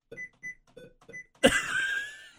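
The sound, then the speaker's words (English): Four short, evenly spaced high beeps lead into a louder, brighter computer alert tone that rings out for about a second, the sticky keys warning sound triggered by pressing the Shift key five times, with no talking. “Sticky keys. And then it's like, weird sound too? Goes bloop, bloop, yeah.”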